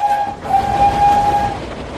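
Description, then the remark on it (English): Spencer, a streamlined silver engine, rushes past with a steady rumbling roar, a sustained high whistle or horn tone ringing out over it for most of the two seconds, loud. “When Spencer races along, he sounds like this.”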